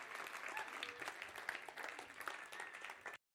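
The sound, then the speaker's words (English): An audience applauds people called up to the stage, with steady, dense clapping that holds at an even level for about three seconds, then cuts off abruptly. “So give these guys a round of applause and yes, thank you.”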